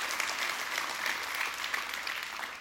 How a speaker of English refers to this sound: If you agree with that statement today, let me hear you clap your hands all over the room.